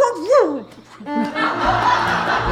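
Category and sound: animal, dog barking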